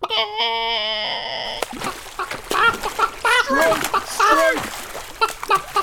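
chicken clucking

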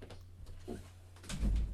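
door being closed

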